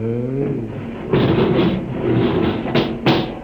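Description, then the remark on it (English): A low, droning hum gives way to a steady rushing, grinding noise as a sliding door into the main control room opens, ending with two sharp clunks a moment apart. “Open the door”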